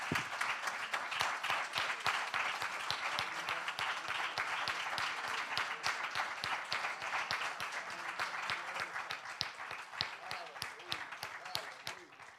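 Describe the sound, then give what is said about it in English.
A standing audience applauds steadily for about twelve seconds, dense overlapping hand claps at a consistent, fairly loud level, with faint voices mixed underneath. “Now, we stood and we gave him a hand clap, but that didn't sound like a great hand clap to me.”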